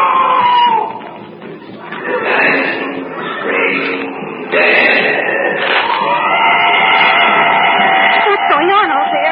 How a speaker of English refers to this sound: Wounded animal screaming out.